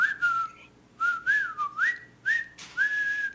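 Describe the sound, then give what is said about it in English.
A jaunty marching tune whistled in unison by a group of British prisoners of war marching in formation into a POW camp, clear, with short phrases separated by brief breaths and a steady, rhythmic lilt. “And then you hear whistling.”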